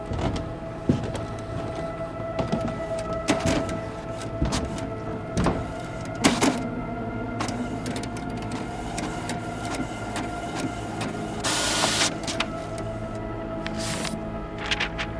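A printer runs, whirring steadily with humming motor tones, sharp mechanical clicks and clunks, and a couple of brief rasping bursts as paper feeds through. No one speaks.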